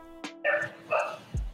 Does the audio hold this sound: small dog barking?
yes